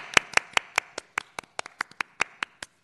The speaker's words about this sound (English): Thank you. Let's give this team a round of applause.